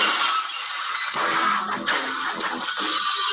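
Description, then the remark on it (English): A loud burst of shattering glass, bright and crashing, sustained for several seconds: the intro of Stone Cold Steve Austin's wrestling entrance music, with no voices over it. “Yes, as soon as you hear the glass, you know something's happening.”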